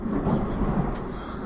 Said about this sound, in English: Awesome. God, I really hope we're getting the crashes of thunder on the audio.